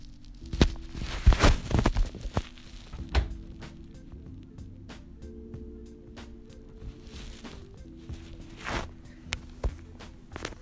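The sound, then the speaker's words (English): A female dog licks herself with wet, irregular smacking and slurping sounds, louder in a cluster early on, then softer scattered clicks over a low, steady background hum. “So yeah, my dog was licking herself.”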